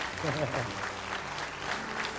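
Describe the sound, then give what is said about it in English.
An audience claps hands in praise of the Lord, a dense, steady wash of applause lasting a couple of seconds, with a voice speaking briefly underneath at the start. “Give the Lord a hand clap of praise today.”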